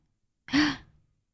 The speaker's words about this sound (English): I have to sneeze.